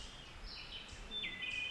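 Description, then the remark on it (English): Faint birds call outdoors, with several thin, high chirps and short whistled notes overlapping against a soft background hush. No one speaks. “Can you hear all those birds calling?”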